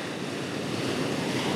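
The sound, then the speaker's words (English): A steady, full roar of ocean surf at a beach washes continuously, with waves rushing and breaking at an even loudness and a touch of wind noise mixed in. No one speaks. “we're leaving the desert and heading west to the beach. There's the ocean.”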